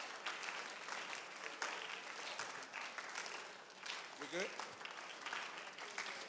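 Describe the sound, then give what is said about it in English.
An audience gives a slow clap, clapping steadily for several seconds, a dense, fairly loud patter of many hands, with a brief voice rising over it midway before the clapping carries on. “This slow clapping can awkwardly stop.”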